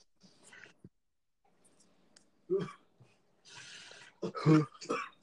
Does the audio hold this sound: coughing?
yes